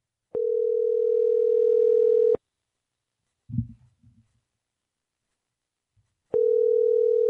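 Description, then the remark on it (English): A steady electronic telephone tone sounds for about two seconds, falls silent with a few faint low thumps in the gap, then returns, as a call is being placed to a hardware store. No one speaks. “So let me see real quick if I can just get on the phone.”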